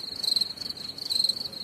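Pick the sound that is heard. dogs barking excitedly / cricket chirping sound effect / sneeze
cricket chirping sound effect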